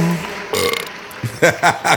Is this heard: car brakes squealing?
no